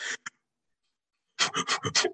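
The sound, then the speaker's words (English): A person imitates rhythmic panting breaths like labor (Lamaze) breathing, quick and breathy: a short puff pair, a pause of silence, then a run of about six hurried huff-like exhales. “Oh, she was doing like labor breathing. That's what it sounded like. She was doing Lamaze, bro.”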